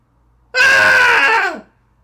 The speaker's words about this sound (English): And that was today's Daily Cathartic Scream